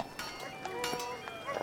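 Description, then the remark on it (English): Several hollow, knocking hoofbeats of a horse pulling a carriage clop along at an uneven walking pace, moderately loud, over a faint steady background tone. “All right, so you hop on in, hand him the cash, and you feel that horse going.”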